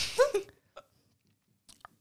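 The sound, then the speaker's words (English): A brief slurping first sip from a freshly opened canned drink during a taste test, followed by a couple of quiet, soft swallowing clicks in otherwise silence. “Here we go, first sip.”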